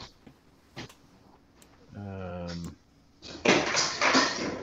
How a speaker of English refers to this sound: is knocking stuff over. He's getting ready for a fight.